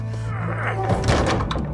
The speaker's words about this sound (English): When they fall back to reload, survivors run forward, pull shut, and try to secure the door. But it won't hold.